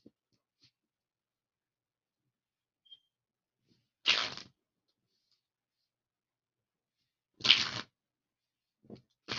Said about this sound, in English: These cards are not wanting to shuffle here. Somebody's trying to make life difficult for the fire signs, I see.